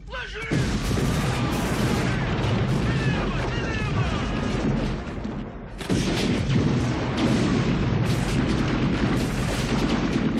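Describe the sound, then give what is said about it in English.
A loud, continuous barrage of movie-style explosions and gunfire fills the scene, dense and roaring without pause apart from a brief dip midway, with voices faintly mixed into the din. “Now, the statics here, these things are all the second, all the explosions and stuff.”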